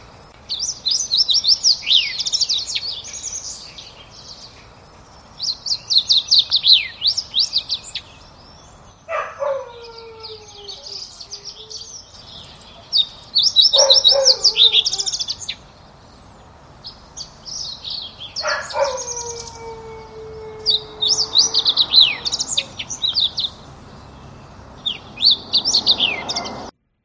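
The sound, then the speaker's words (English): A fox sparrow sings repeated bright, warbling phrases with brief sliding whistles, clear, while a neighborhood dog gives a few long descending whines between phrases. “And I have another recording of a different fox sparrow where there's not quite as much of the sliding whistle part of the song, but you can still hear that.”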